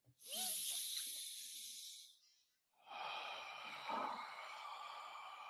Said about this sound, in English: Firstly, breathe in through your nose, out through your mouth, right?